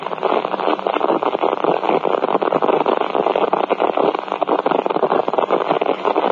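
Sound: radio static interference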